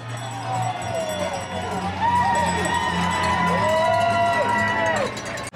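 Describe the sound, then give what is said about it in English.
A large crowd at the New York City Marathon cheers steadily on a warm day of about 70-something degrees, with overlapping voices, high shouts and whoops rising and falling throughout, loud and unbroken for the whole stretch over a low rumbling background. “Listen to this amazing crowd.”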